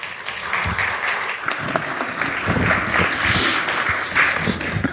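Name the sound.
audience round of applause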